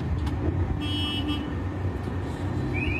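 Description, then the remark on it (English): A truck's engine rumbles steadily as it pulls up to its drop location in the rain at 3:38, a low continuous drone with a faint, brief toot partway through and no talking. “So then I'm driving to my location. It's 3:38. I pull up. Pulling up right here.”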